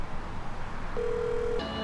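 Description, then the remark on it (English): Telephone keypad tones as a number is dialed to call AAA for a tow truck: a steady mid-pitched beep lasting over half a second, then a second tone that continues to the end, over a soft background hiss with no talking. “I need to call AAA and see if by any miracle there's a tow truck that can bring me and my car to Valencia.”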